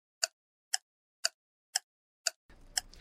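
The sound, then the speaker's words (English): A clock ticking sound effect ticks in a steady, evenly spaced rhythm, six crisp, loud clicks about half a second apart, with a faint background hiss rising near the end. “if you could, cue the clock.”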